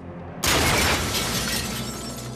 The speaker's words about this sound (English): She shotguns a guy through a cafe. Poor little croissants got knocked all over.